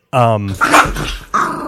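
The speaker's dog, Samson, growls and then lets out a couple of sharp barks in a quick, agitated burst, loud.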